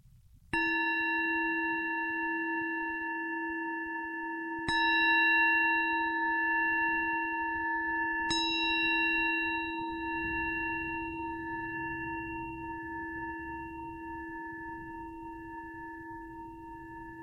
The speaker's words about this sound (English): And when you hear the sound of the bell, if your eyes have been closed, you can gently open them or raise your gaze.